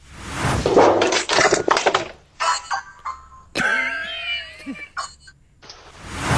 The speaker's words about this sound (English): And I know you can't see the visuals, but the sounds are amazing. It starts with the cat sort of clattering the door, but managing to hit the doorbell, and then the whole story unfolds in front of our ears.